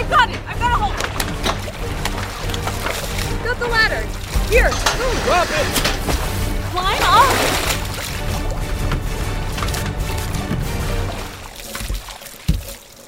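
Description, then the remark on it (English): Water sloshes and splashes steadily around a small boat, a continuous wash of churning water, with people's voices breaking in over it now and then. “The splashing's coming from over there now!”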